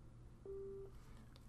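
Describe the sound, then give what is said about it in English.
A single steady telephone tone sounds for about half a second over a quiet, hissy background, a call tone from a phone call placed on speakerphone. No one speaks. “So I'm going to call Dro on speakerphone”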